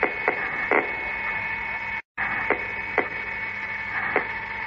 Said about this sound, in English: while at the same time the machine emitted a curious clicking sound.